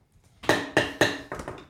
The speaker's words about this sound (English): Bang the gavel.